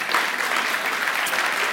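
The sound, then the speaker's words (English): An audience claps steadily, a dense wash of many hands applauding at an even, fairly loud level throughout, with no voices standing out, celebrating a gleaning project that 85 to 100 people helped with the day before. “So you can clap for that.”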